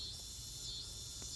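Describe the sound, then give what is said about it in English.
Cicadas buzz in a continuous, high-pitched drone that holds steady without pause, fairly soft, with a low rumble underneath and no voices. “Sorry about that, you know, cicadas or something.”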